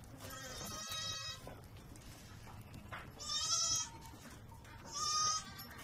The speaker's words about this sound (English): And pretty soon, what's on the other side will come into view, if they're home. Yes, there are real goats here.